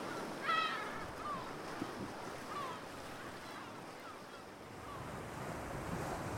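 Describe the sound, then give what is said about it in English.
Sea waves crash and wash against the ancient coastline at St. Govan's in a steady, rushing roar, with a chill, howling wind gusting across the microphone throughout. No one speaks. “We want you to feel the energy and power as the sea crashed into the ancient coastline, to feel the wind and its chill as it howled a furious song.”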